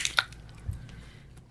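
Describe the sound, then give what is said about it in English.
A quiet sip of water: two short wet mouth clicks followed by a soft low gulp, with no one talking. “I got to get a little water here.”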